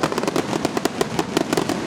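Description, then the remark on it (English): A fireworks finale bursts in a dense, rapid barrage, sharp pops and crackles overlapping one after another with no pause, loud, like the frantic stretch of a finale. “As where we're located, we were actually down by the WZDM tent, and I say were, I think ZDM's tent is gone, and right now, they are putting up the finale for fireworks.”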